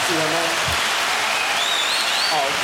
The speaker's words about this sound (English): So I got to cut the applause a little short because you want to remain anonymous.